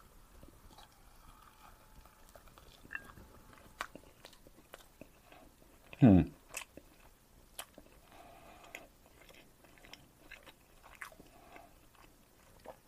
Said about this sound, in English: And last time, there was a lot of chewing noise on the mic, so this time I'm going to sort of cover the mic with my hand a little bit and try not to sound so obnoxious as I'm chewing. So we'll see how that works.